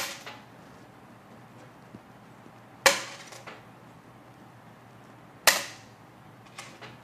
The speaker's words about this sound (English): And here is the newer coin that actually has more copper in it. Notice how it's a little bit more of a duller thud.